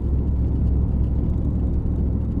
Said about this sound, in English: drives a maroon 1998 Ford pickup truck across a bridge at Cedar Creek Lake. The truck, nicknamed Maroonie, is rusted in a few places, and its tailgate has the words, "A Cleaner Kentucky." A kayak is lashed to the bed of the truck.